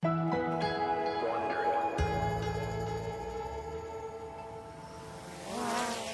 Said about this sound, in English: A small drone is flying over a sunny Brooklyn street. The middle of the day in New York City is usually loud and bustling, but not these days. In this new normal we're living in, Brooklyn is eerily quiet.